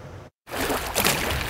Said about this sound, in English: Each wave throws up more water, slowly increasing the amount of water in this parking lot by the waterfront in Saint-Anne-de-Bellevue.